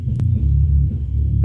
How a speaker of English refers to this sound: If people can hear, apparently there's a band playing down here now. I'm sure you've heard the bass for a while. We try to coordinate it where they're not playing, but there you go. They're playing right now.